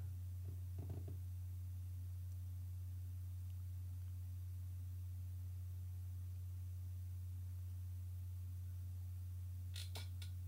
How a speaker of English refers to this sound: Sorry, my chair's squeaky.